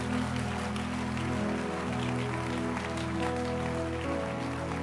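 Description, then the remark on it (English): A crowd claps hands for Jesus in a dense, continuous patter over sustained, droning musical chords, the clapping steady and fairly loud throughout with no speech. “Can you clap your hands for Jesus tonight?”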